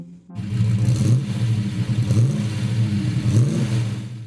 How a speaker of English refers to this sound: Wonder what that is? That's 8 cylinders of your future. Parentheses. Picture of monster truck. End parentheses. This thing creeps down the track to a NASCAR race, shooting combos out of a t-shirt cannon.